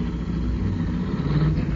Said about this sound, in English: Now get into your car and drive off down the street.